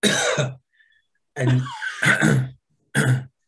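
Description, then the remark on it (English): A person demonstrates a cough with several deliberate, harsh coughs: one burst, a pause, a rapid cluster of hacking coughs, then a final short cough. No talking in between. “A cough is...”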